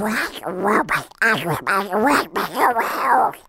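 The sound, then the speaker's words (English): A voice does a garbled, quacking Donald Duck impression, delivering a continuous stream of squawky, buzzing syllables for several seconds with only brief pauses. “I gave it all in a Donald Duck voice, though, to get back at my teacher.”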